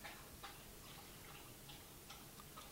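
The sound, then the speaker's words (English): A dog laps water in a steady, quiet rhythm: soft wet clicks about two or three per second, repeating over a low hiss with no talking. “Oh yeah, and if you hear that, that's if this sound comes out, that's actually our dog drinking water in the background.”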